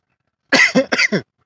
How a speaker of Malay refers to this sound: Maaf ya, kita tengah mengalami season batuk-batuk. Tadi baru makan kacang, gatal.